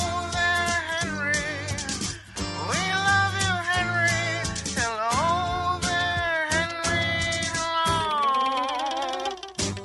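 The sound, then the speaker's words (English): A goose honks loudly and repeatedly on WBT's Good Morning Show radio broadcast, its nasal calls rising and falling in pitch in a continuous, overlapping stream for about ten seconds, with no talking. “And the goose says hello to you, too.”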